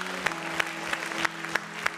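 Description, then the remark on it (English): An audience claps in praise to the Lord at a morning service, sharp unison claps landing on a steady beat about three per second over a dense wash of scattered clapping and a low sustained musical tone. “Come on, let's give the Lord a hand clap of praise this morning.”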